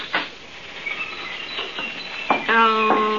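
A dense chorus of small birds, including parakeets in a big cage, chirping and twittering in a pet shop, overlapping high calls throughout, with a louder, longer squawk-like call near the end.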